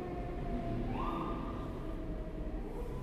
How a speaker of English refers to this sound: Oh, sirens. I hope everybody's okay.